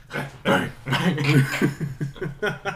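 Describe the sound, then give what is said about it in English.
A dog makes a run of short, whiny, grumbling vocal noises, about eight uneven bursts in quick succession that rise and fall in pitch, with no other sounds around them. “And the dog going.”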